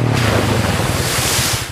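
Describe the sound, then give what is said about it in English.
A steady, loud wash of ocean surf fills the short stretch, with a low rumbling churn beneath the hiss and no voices, fading slightly at the very end. “The van was supposed to screech and splash first, and then go across the ocean.”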